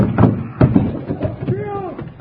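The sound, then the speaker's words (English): The door of a magic box closes as someone steps inside, with a few dull, knocking thumps, irregularly spaced, mixed with voices; a rising and falling vocal tone follows near the end. “I just step inside like this, say the magic word, and close the door.”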